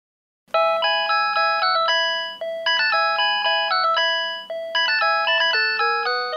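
A mobile phone ringtone plays a bright, tinkling melody from Vivaldi's Four Seasons in quick electronic notes, loud, repeating its phrase in bursts with no one speaking.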